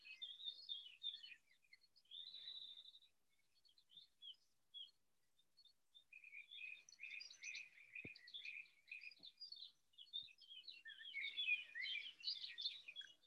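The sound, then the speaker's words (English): Several birds chirp and sing outdoors beneath overhanging trees in a busy, overlapping chorus of high, quick notes, growing denser toward the end, with a couple of faint soft knocks in the background and no voices. “Bird life.”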